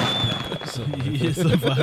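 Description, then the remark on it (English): A rapid barrage of fireworks crackles and pops, with a thin high whistle running throughout and voices talking underneath. “I'm going to have to put some fireworks.”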